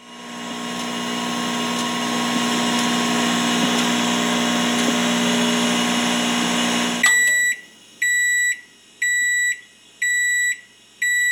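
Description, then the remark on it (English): A microwave oven hums steadily for several seconds, then shuts off and gives a series of about four evenly spaced, high-pitched beeps. Fairly loud, with no talking. “Microwave. No triangles.”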